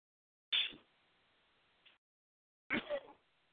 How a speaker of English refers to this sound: And the, excuse me, I got a sneeze.